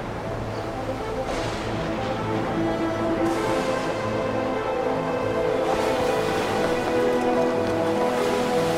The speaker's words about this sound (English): During the night, a fierce storm hit the lake. Large waves crashed over the boat and threatened to capsize it.